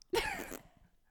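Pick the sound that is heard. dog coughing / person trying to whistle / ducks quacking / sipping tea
dog coughing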